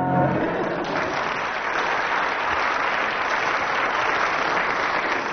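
Sustained audience applause used to judge a contestant's performance, a dense steady wash of clapping hands that holds at an even, fairly loud level for the whole stretch without fading.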